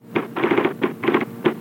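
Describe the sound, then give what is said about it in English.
Rapid typing on an IBM Selectric electric typewriter, fairly loud, with short bursts of clattering keystrokes in uneven clusters and brief pauses between them, and no voices. “Someday all typewriters will work like the IBM Selectric.”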